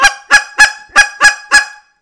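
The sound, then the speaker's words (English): Six loud, honking calls from a goose call pushed into a cluck, in a quick, steady rhythm, each one a harsh, clipped cluck with a strong nasal tone, with no talking. “So guys with crutches where they're like accidentally pushing their way into a cluck are always going to struggle being subtle, quiet on the low end because they can't help but push their way through to a cluck. So a lot of times that sounds like”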